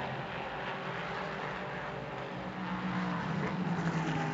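A prototype race car engine roars steadily as it sweeps past on track during the 2020 IMSA Prototype Challenge race at VIR, its harmonic pitch climbing slightly, with a loud, continuous mechanical drone and no voices.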